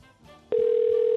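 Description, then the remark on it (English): A phone call placed live on a radio show rings on the line with a loud, steady electronic tone that cuts in abruptly halfway through and holds one pitch to the end, after a faint, murmuring lead-in. “Okay, we're calling.”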